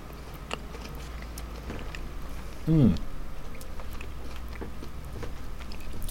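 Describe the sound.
Crunchy chewing of a Cadbury gingerbread chocolate block with small crunchy gingerbread biscuit pieces, with faint irregular crackles and snaps over a low background hiss, and a short voiced hum partway through.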